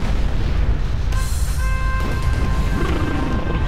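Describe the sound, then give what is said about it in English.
A deep, thunderous rumbling roars steadily and loudly throughout, heavy booming crashes layered within it, while thin high tones ring faintly over the din partway through: a fortress wall being broken open, shaking the building. “As if on cue, a thunderous rumbling shakes the building. Then another, the sound of our impenetrable fortress wall being broken open.”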